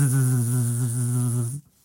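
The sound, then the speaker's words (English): A voice imitates buzzing cicadas with a steady, droning nasal buzz held for about a second and a half, strong low harmonics with a slight wavering pulse, then cuts off abruptly into quiet. “They got the cicadas. That's how they sound”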